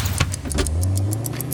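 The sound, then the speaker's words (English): A car engine hums steadily at low pitch while driving, rising slightly in tone as it picks up speed, with light metallic jingling ticks scattered over the top. “It's as if it waits for a little pressure on the pedal. Oh, that's never sounded so good.”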